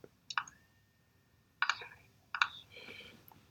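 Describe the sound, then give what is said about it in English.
A few slow, widely spaced keystrokes on a keyboard, sharp clicks separated by long pauses, moderately loud against a quiet background. “I like the slow typing that's going on at this point.”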